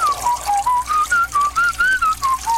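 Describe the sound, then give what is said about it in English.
A man whistles a steady, wandering tune while using a urinal, the notes flowing one into the next, over a constant hiss like water splashing in the urinal. “He also loves to do manly things like chopping wood and whistling at the urinal.”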